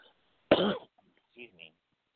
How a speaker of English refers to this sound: That's my seasonal cough. I don't have corona, just to let you know.